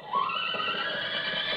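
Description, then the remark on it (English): A horse named Em, or Old Em, whinnies once in a long, steady, fairly loud call that rises briefly at the start and then holds, with no voices over it. “She looks exactly like a horse.”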